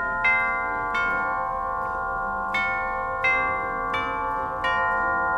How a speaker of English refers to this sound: I'll get it. I've watched a lot of movies, and one of the first things you notice is that a doorbell can change your life.